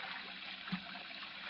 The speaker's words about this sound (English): Oh, what's that? I think it's the trick ice water showers in the House of Mirrors. You know, you step on a panel or something, you get doused with ice water. Yes, but it sounded right close by. Sure. The water splashes back down here in this tank.